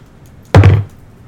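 A hand slams down on a table next to a microphone once, making a loud, heavy thud with a booming low end that fades in a fraction of a second. Nobody speaks.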